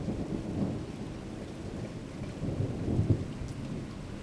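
Steady rainfall hisses throughout while deep thunder rumbles underneath, rolling low and swelling briefly louder toward the end. No voices, just the continuous wash of a storm.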